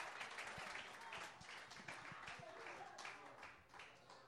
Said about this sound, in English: ¿Alguien le puede dar un aplauso a Jesucristo? Can somebody give a hand clap to Jesus?